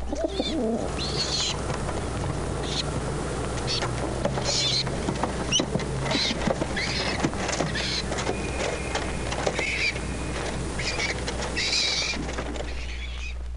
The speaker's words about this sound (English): The young pigeon, or squab, has a much higher pitched note than that of the adult. Here, both are calling at the nest with a certain amount of wing flapping.